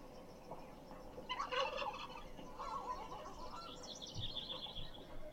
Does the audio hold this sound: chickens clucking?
yes